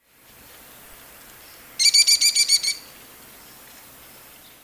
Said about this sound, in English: It was hard for me to hear this two-syllabic notes at first. But once you hear it, it can become distinctive. One more time, the Kelly, Kelly, Kelly call of the American kestrel.